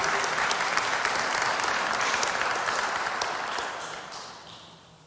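audience applause

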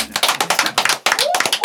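people clapping

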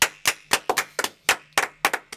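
applause

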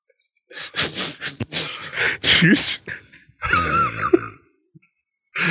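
sneeze

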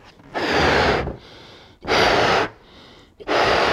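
balloon being blown up

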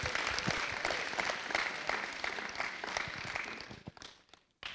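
audience applause

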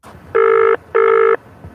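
telephone ringing

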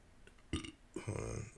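burp

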